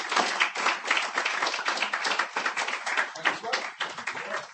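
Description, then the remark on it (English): An audience applauds steadily as a poet is clapped to the stage, with many overlapping hand claps forming a dense, continuous wash of sound that holds fairly even in loudness throughout. “Please clap the poet to the stage.”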